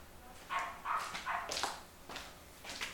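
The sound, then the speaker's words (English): A small dog barks in a backyard in a quick series of high, sharp yaps, about six in three seconds, with no one talking. “There's a little dog barking in my backyard.”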